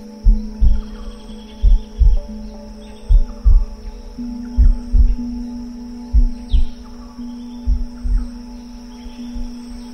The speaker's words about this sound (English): You are so warm and safe and loved, and you can hear a little heartbeat keeping you extra safe.